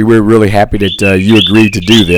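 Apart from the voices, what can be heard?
birds chirping outdoors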